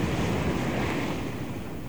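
Sea waves breaking on a shore, heard as a loud, steady rush of surf with a windy hiss over it, continuous, with no voices.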